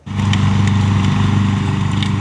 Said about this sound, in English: The sight and sound of the jaws of life ripping off the driver's side door.